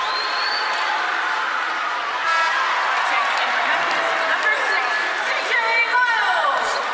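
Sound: arena crowd applause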